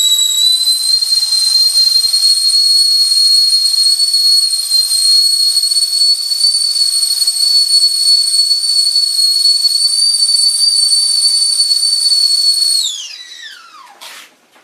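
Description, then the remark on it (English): A whistling kettle screams on one steady, piercing high note for about thirteen seconds, then the whistle quickly sags in pitch and dies away. Loud, with no talking. “That was a whistling kettle.”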